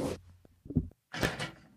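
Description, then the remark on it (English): A door is banged several times in irregular bursts of thumps and rattles, loud, with short pauses between the knocks and no one speaking. “Just stop banging on the door.”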